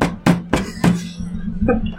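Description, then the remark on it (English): Four sharp, thumping impacts of a man's hand hitting a table as he walks out, fairly loud and irregularly spaced, ringing briefly against a low steady hum. “Why did he hit the table on his way out?”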